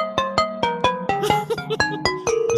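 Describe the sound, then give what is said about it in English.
A glass marimba plays a quick melody of about a dozen struck, bell-like notes with shimmering overtones, each ringing briefly over a steady low sustained tone, with no voices. “That was glass marimba hard.”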